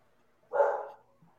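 A single bark from the speaker's dog Harley, moderately loud, rising sharply and fading within half a second, with quiet surroundings before and after.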